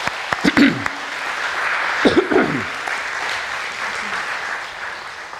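A crowd claps steadily for a forum in a dense wash of applause, with brief louder bursts and a few muffled voices or cheers rising near the start and again around two seconds before it settles.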